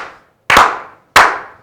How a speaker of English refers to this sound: R.I.P. to 41, George W. Bush Sr. passed on Saturday at the age of 94, though. Can we slow clap this brother out, yeah, man?